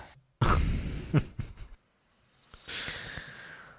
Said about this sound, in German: Nee, wenn er das atmet schon so schwer. Es liegt aber daran, dass ich gerade einen Schluck Bier genommen habe.